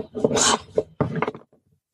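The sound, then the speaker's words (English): A folding shape puzzle, which can form 70 different shapes and be returned to a square, is twisted and folded, giving a quick run of dense clicking and rattling bursts that stop abruptly and leave only faint handling noise. “We spread it out and try to get it back to a square. There's 70 different shapes and sizes you can do with this thing.”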